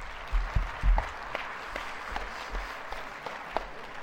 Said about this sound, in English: Well, I look forward to my applause.